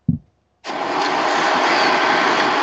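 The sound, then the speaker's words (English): A car engine running, heard from inside the car: after a soft low thump, a loud, steady whooshing hum starts abruptly and holds evenly to the end, with no one talking. “I'm going to go ahead and do just a voice memo for now, as I am also in the car.”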